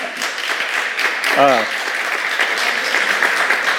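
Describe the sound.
An audience applauds steadily, dense overlapping clapping filling the whole stretch at an even loudness, with a brief voiced whoop rising out of the crowd partway through.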